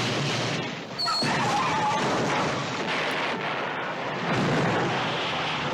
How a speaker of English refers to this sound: They're literally just blowing up a town. And go. Explosions everywhere. Everyone's just driving in there. Cars catching on fire.